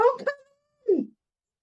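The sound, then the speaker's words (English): A brief, strained vocal cry like a scream, voiced by someone imitating it, with a thin sustained tone trailing off and a second short, lower outburst after a pause. “You hear a scream.”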